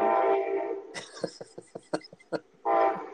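A train rolls past, its horn sounding at the start and again at the end, with a steady rhythmic clatter of wheels over rail joints in between. No one speaks.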